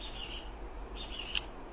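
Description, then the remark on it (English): A bird calls twice, two thin, high-pitched phrases separated by a short pause, fairly quiet against a steady low background hum, with no voices present. “The bird agrees.”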